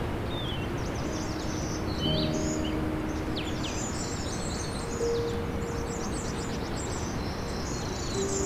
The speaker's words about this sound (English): This can make for a soundscape that is full of bird songs. This spring, 50-point conservation area between Grimsby and Stony Creek became a hotspot for these kinds of events due to its proximity to the shore of Lake Ontario and the wetland habitat